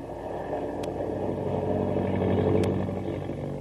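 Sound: airplane engine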